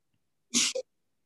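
A single sharp sneeze, fairly loud, with a breathy burst followed by a brief voiced tail, then silence.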